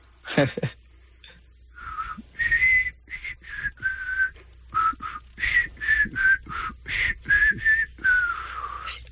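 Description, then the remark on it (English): A person whistles a song at half speed, with a steady run of separate, breathy notes rising and falling in pitch. The whistling is clear with no talking over it. “At least he's whistling it at half speed.”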